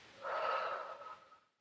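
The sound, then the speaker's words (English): A single audible breath, drawn in and let out over about a second as part of an energy-release exercise, soft and airy with a faint whistling edge, with no talking. “Breathing in and releasing.”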